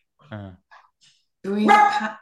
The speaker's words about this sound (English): That's Penny, my dog. Wanting to chime in.